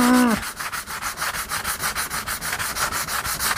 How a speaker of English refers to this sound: Let me sand a little bit more. Let's see if I could just sand the shine off. That'd be the easiest thing. Yeah. Of course, I'm sanding off all my gesso. That's okay. Let me go to the rough side.